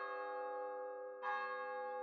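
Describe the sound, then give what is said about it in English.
A neighboring church chime strikes the four quarters on a hazy night, with long, resonant overlapping tones; a fresh strike lands partway through as the earlier notes keep humming. Fairly loud and alone, with no voices. “As Scrooge looked out into the hazy night air, wondering the time and whether his visions of Marley had been a dream, a neighboring church chime struck the four quarters.”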